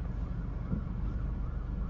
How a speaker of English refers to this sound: It's a siren. Yep, he's coming by. So I'm going to pull over. I'm going to stop and let him get past me.